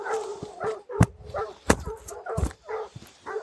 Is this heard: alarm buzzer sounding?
no